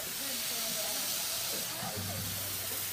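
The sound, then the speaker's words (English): Burger patties seasoned with garlic, onion, salt and pepper sizzle on a Blackstone griddle in a steady, continuous crackling hiss that fills the whole stretch, with a faint low hum underneath. “We would call that a sizzle in English, that sound.”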